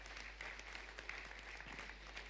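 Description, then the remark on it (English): An audience applauding steadily as a clap offering to the Lord, a dense wash of many hands clapping at once with no distinct individual claps standing out, sustained at an even level throughout. “Give the Lord a clap offering, everybody, now.”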